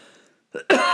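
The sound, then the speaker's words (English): A short throat-clearing cough: a brief rough burst, then a louder harsh cough that carries to the end, with faint murmur before it and no speech. “Sorry, I had to cough, and that's not going to be edited out because that is the nature of right now.”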